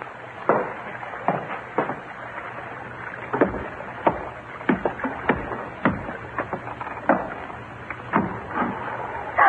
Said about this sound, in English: did you hear that? Yeah, small boat just tied up alongside.